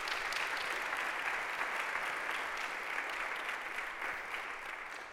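A crowd claps steadily, a dense patter of many hands at an even, fairly loud level that holds for about five seconds and eases off only slightly at the end.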